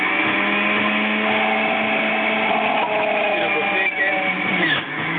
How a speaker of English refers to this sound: I might have to juice while I do this one.